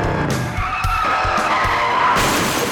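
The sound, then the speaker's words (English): A motorcycle skids with a loud, sustained tire screech, broken by several harsh crashing impacts, intense throughout, with no voices. “A motorcycle accident changed everything.”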